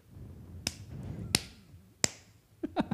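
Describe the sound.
Three crisp, sharp slaps on skin land about two-thirds of a second apart as a taped-on henna tattoo is slapped onto the skin, followed by a quick cluster of softer, duller smacks near the end, with low rumbling background noise and no talking.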